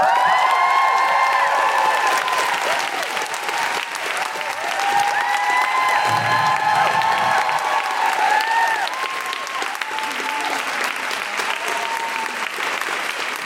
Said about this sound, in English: Roll out your red carpets, make general woo-hooing noises, and cheer and clap like a Hollywood shiny-teethed American audience for Gemma Arterton!